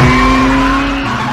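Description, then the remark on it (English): A race car engine roars steadily while tires squeal in a long, high, sliding whine, the loud mix holding for over a second before easing slightly, with no voices; a scene from the racing film Ford v. Ferrari. “This is a newer movie, and it's not Cars, but it is a racing movie, so I'm hoping it counts in your mind. It's Ford v. Ferrari.”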